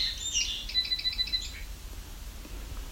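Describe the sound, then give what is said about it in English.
A song sparrow calling: a few sharp high notes, then a quick run of about eight repeated chips, fairly faint over a low background rumble, ending after roughly a second and a half. “It's a different call for a song sparrow.”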